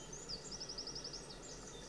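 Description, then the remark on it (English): Birds singing: a quick, even run of about eight high, thin chirps, fairly soft, over a steady low rumble, with fainter twitters trailing after. No one speaks. “I think the birds would be singing if we did that.”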